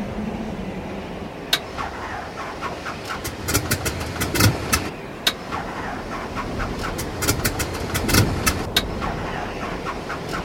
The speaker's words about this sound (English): Start that engine again.